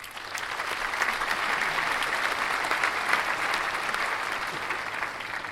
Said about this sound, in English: Have a round of applause.